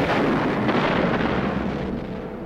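Bombs exploding in a daylight air raid over Hamburg, Germany, as tons of bombs fall from squadrons of aircraft, merging into a dense, continuous rumbling roar that stays loud throughout and eases off slightly at the end, with no voices.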